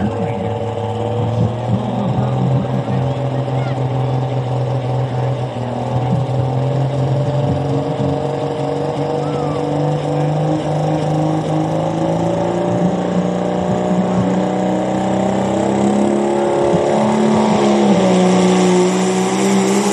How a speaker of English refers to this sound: Oh, it was great. It's the greatest feeling in the truck to go 33, 34 mile an hour. I mean, that's cooking in our trucks.